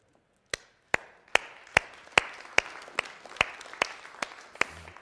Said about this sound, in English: I'm trying not to clap here because I listen to the recordings of the services and that's all I hear is me clapping, you know. If I look like a walrus, you know, that's why.